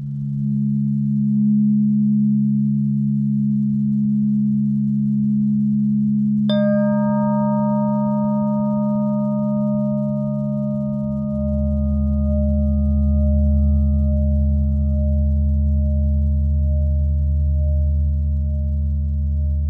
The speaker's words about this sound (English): The chimes and tuning forks you hear are from the Accutonix sound system and are made with precision based on revolutionary scientist Johannes Kepler and his mathematical calculations of orbital frequencies, known as the music of the spheres